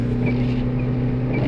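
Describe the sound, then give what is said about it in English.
The engine of an old 1997 Ford Escort car runs loud, a steady low droning rumble with a constant pitch and no revving, on a snowy day, with no voices over it. “Listen to the engine roar of my old car. 1997 Ford Escort.”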